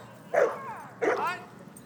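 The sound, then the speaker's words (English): A dog named Oscar gives two sharp barks about half a second apart, each trailing into a higher, whiny yelp, clear against a quiet background. “I'm sorry, I can't hear you over the barking.”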